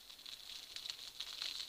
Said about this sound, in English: But it's got a wood burning fire there. That makes a kind of nice crackling warm sound.